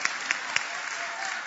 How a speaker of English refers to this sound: Girl, you better buy your house. I'll clap for myself on that one.